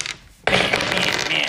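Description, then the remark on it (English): A brief hush, then dice suddenly clatter and rattle across a hard tabletop, a busy run of loud clicks that keeps going to the end. “Where did the other dice go?”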